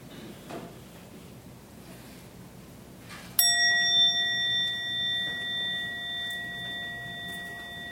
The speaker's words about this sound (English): I'll ring the bell once for us to start, and then when we get to the end, I'll ring it three times.